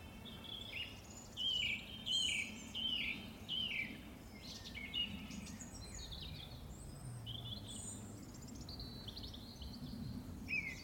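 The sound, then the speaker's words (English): A nuthatch calls from an oak tree in the Brecon Beacons in early April, in a quick run of sharp, repeated whistled notes, followed by scattered chirps from other birds, including a song thrush, over a steady low outdoor rumble. “There's a nuthatch there as well, so... Wow. Just in an oak tree.”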